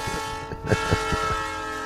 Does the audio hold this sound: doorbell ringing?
no